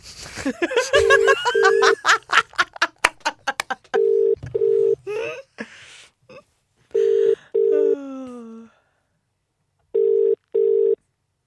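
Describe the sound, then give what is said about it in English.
A phone call to a woman rings out: steady low double-beep ring tones come in pairs, repeating every few seconds, with laughter and brief talk between the first rings and a wavering tone partway through. “Anyway, give her a call. Okay. Let's give her a bell.”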